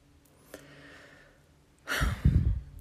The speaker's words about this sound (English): Deep breathing.